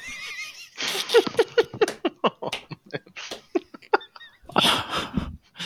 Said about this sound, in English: fucking incessant breathing.